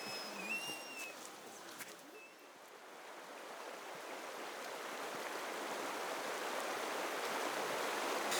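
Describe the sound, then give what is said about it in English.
The River Rorth flows steadily beside a small woodland glade, its broad rushing hiss building slightly louder over several seconds, with a few brief bird chirps early on and no one speaking. “Well, we're coming into a lovely little glade beside the River Rorth, and it gives us an opportunity to have a few reflections on the journey thus far.”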